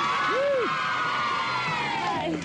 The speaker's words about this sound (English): Big cheer.